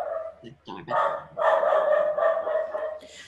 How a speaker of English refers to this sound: Okay, I'm just, this is going to be edited out, but do you hear my dog barking in the background? That wasn't mine.